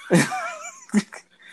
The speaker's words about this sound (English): And you'll probably hear my yappy dog in the background at some point.